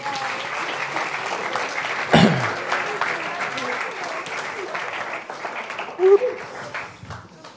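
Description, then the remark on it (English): A crowd of adults applauds children steadily for several seconds, a dense wash of many hands clapping at once, with a few voices murmuring underneath and a sharp louder burst partway through. “Adults, can we clap for them, please?”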